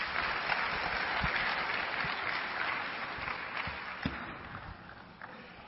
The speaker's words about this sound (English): Happy Mother's Day. One more time, let's applaud.